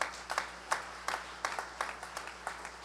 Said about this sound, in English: If you believe it, clap your hands to the Lord.